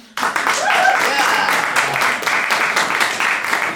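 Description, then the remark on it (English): An audience votes by clapping to fund further research on Paleo O'Rourke, bursting into steady, dense applause that starts abruptly and holds at an even loudness for several seconds, with a brief whoop or two rising above the clapping. “So, audience, in your research funding decisions this year, clap if you'd like to research further, fund further research on Paleo O'Rourke.”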